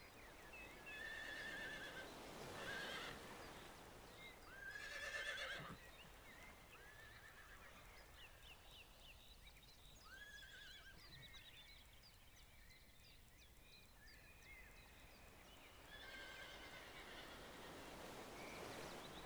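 Horses grazing on lush vegetation neigh and whinny a few times, with bright shrill calls clustered early on, over a steady outdoor background of rustling leaves and faint bird chirps; no one speaks.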